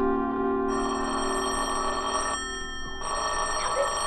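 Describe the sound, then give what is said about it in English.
A telephone bell rings continuously with a bright, sustained metallic trill, fairly loud, briefly dipping mid-ring before carrying on, in the radio drama Sorry Wrong Number. No voices are heard. “Stop ringing, will hello?”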